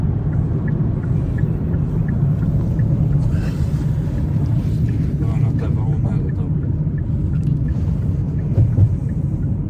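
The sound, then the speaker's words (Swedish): A car carrying three young men, banned from driving, drives on Västerbro, where it has just been driven at about 110, with a steady, loud low rumble of engine and tyre noise that holds constant throughout, with some muffled voices at moments. “Och här sitter vi alltså tre killar i en bil med körförbud.”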